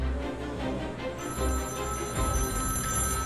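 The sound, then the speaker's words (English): A telephone bell rings steadily with a bright metallic tone, starting about a second in and carrying on to the end over a low, rumbling room background. No one speaks. “There was a phone call for him.”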